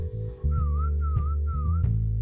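A clear whistled tune, three short wavering phrases around the same pitch, sitting over a steady, loud low-end bed of music or hum, with no talking.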